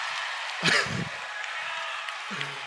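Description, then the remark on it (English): An audience cheers and claps steadily, with a sharp whoop rising near the start before the noise settles into a sustained wash of applause and scattered voices. “Okay, so what are y'all cheering for that?”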